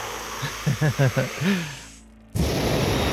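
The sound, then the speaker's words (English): A few short, pitched vocal grunts give way to a brief hush, then a sudden loud, steady rush of breathy blowing noise that lasts until the end, as someone who has piled on more firewood gets low to the flame and blows a massive breath onto the fire. “… is gonna pile on probably 3 or 4 more pieces of firewood, and then he's gonna get down on his, like, low to this flame, and you're gonna hear him just kind of take this massive, like, wolf blowing down a pig's house breath.”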